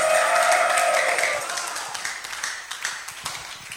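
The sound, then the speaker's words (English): A church audience claps and shouts praise to the Lord together, loud voices ringing out at first, then fading after a second or so into scattered, uneven handclaps that gradually trail off. “Can you give the Lord a clap and a shout of praise in the church?”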